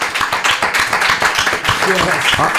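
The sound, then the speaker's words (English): An audience of people who have seen something at the Fonseca Theater Company applauds in a steady, dense wash of clapping that fills the whole stretch, with a voice or two briefly rising through the noise toward the end. “Any applause for people who've seen something at the Fonseca Theater Company?”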